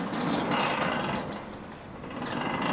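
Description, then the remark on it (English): A well-oiled metal gate at a mine entrance leading underground slides open smoothly, giving a steady, hushed whooshing hum with no creaks or groans, dipping slightly midway before swelling again. No voices are heard. “Remember how loudly the other doors groaned when we opened them? Now listen to this.”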